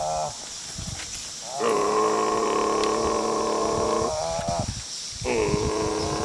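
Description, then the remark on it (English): A buffalo lets out two deep, drawn-out grunting moos, the first lasting a couple of seconds and the second starting just after a short pause. Both are loud, with no talking. “Okay, so it's a pretty badass sounding moo, I guess.”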